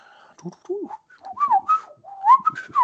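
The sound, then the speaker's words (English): A person whistles a string of chirpy, bird-like tweets, imitating a bird call with quick rising and falling notes in short bursts, fairly loud, with no talking. “Insert bird noise here.”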